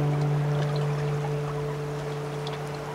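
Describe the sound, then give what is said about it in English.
Water sloshes and trickles steadily around a boat being paddled down a river in a scene from the 1995 film Dead Man, carrying the character William Blake, with faint splashes over a continuous low, droning hum; no one speaks. “Nobody paddles him down a river toward an uncertain fate.”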